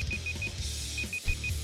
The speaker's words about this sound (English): No, we'd never gotten to the end of it. Oh, it's because I usually mute my game PC, so you guys just heard the timer start.